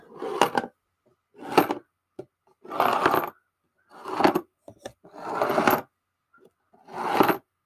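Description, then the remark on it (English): Coins rattle inside a box shaken in six separate bursts, each a bright metallic clatter lasting about half a second with short pauses between, fairly loud with no talking. “What's in the box? It's either coins or chains. It is coins.”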